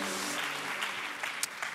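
An audience gathered on the holiday weekend before Labor Day applauds itself, clapping steadily in a dense, even wash of applause that holds at a moderate level throughout, with a few sharper individual claps popping out near the end.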